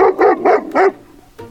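A dog barks four times in a quick, even rhythm, each bark loud, followed by a short quiet pause and a faint final yip.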